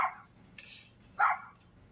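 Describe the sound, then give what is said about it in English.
A small dog across the street yaps a few times, three short, sharp, high-pitched barks spaced unevenly over a couple of seconds, with no one talking. “This little dog across the street.”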